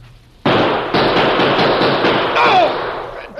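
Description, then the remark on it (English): A loud volley of gunshots erupts suddenly as several men fire together at a man stepping out of a door, sharp cracks piling up in quick succession into a dense, sustained roar, with a brief high whine cutting through near the end. “Get ready now. Everybody fire together.”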